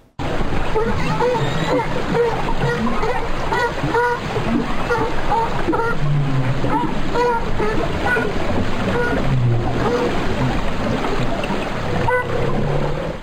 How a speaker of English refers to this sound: And then, of course, if any of you have been to La Jolla Cove, I'm sure you know the sound of the California sea lion. I just had to include them. So they sound like this, just in case any of you haven't heard.